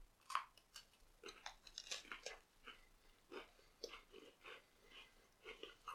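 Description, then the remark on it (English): Crunchy bites into a lemon-flavored cream sandwich cookie, eaten whole without separating the cream, followed by a steady run of chewing with irregular crackles and soft mouth sounds, fairly quiet with no talking. “So I don't feel a need to separate the cream and the cookie here. I'm just gonna munch on in.”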